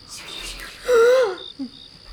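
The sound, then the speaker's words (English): A voice imitates crickets chirping at night: a short, raspy, pitched vocal sound with a faint high trill held behind it, followed by a brief softer vocal blip. No other sounds around it. “Crickets. The sound of crickets.”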